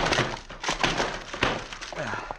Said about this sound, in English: Door's locked. I'll bust it in.